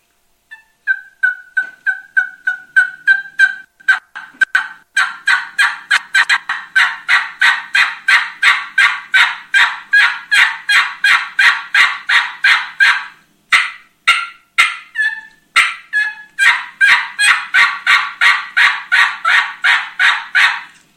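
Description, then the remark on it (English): A long run of raspy turkey hen yelps blown on a diaphragm call, its reed fluttering to add rasp, loud, in a steady rapid rhythm that builds into dense, harsh sequences with brief pauses between series. “Drop your tongue off just a little bit and allow more air to go through there and allow that reed to start flutter a little bit more to get more rasp.”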